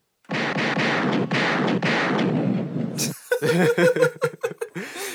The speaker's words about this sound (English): Bust a few gunshots for the New Year.